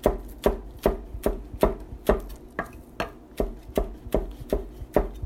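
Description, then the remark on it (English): A knife chopping the green parts of tall garlic chives on a cutting board, with steady, evenly spaced sharp thuds, roughly two per second, fairly loud, with no one speaking. “They're very tall, these garlic chives. That's why it's taking me so long to chop them.”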